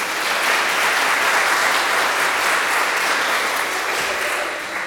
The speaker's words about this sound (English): So give her a round of applause as well.